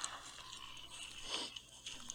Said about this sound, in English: Crunchy crunch on the leaves in the forest.